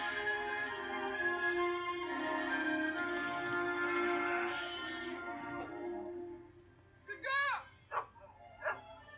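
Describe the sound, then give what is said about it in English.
A sheepdog gives three sharp barks in quick succession near the end, following several seconds of a steady, droning, tonal sound that fades out. “You need pens and a sheepdog. I've got the dog.”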